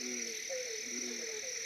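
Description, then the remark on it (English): Frogs kept in big tanks at a restaurant croak in a steady, overlapping chorus, low warbling calls layered over a constant high trilling hum, fairly quiet and with no voices. “Yo, so we buy the frogs and we bring them in here. We keep them in big tanks and people can't get enough of them at the restaurant.”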